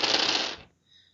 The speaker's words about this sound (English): However, wow, that many dice and not a single 5 or 6. My day. It is awesome. That was 11 dice and not a single hit. Dang. And ironically, only 2 ones.